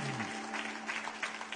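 An audience breaks into steady applause of love and appreciation for a church member, a dense crackle of many hands clapping at an even level, with faint voices murmuring beneath it throughout the short burst.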